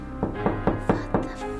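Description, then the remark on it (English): Five evenly spaced, firm knocks on the back door of a lodge, in a quick steady rhythm over a low background hum, with no talking. “You all hear a knock at the back door of the lodge.”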